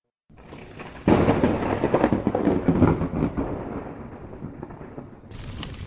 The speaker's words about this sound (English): Something happened! The house! Lightning! The house has been struck by lightning! It's on fire!